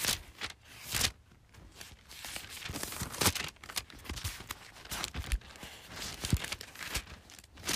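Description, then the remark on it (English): Thin pages of a paper Bible rustle and flip repeatedly as someone turns to Proverbs 13, with soft crinkling swishes and sharper crisp snaps at irregular moments, with no talking. “Y'all hear my Bible turning?”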